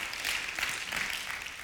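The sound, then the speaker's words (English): An audience claps together in a steady, dense patter of many hands, holding an even, moderately loud level for a couple of seconds with no voices over it. “I know this, how you clap tells me you need to come back for the next 2 weeks.”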